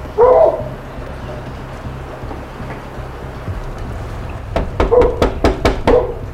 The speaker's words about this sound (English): They knocked on his door several times, which triggered some dog barking from inside the apartment. This seemed to be quickly hushed by someone inside.